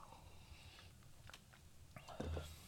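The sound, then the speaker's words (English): A quiet sip of whiskey eggnog from a glass: a few soft mouth clicks and small liquid sounds, then a brief slurp and swallow near the end, with no talking. “You know, I should probably take one more sip just to be sure”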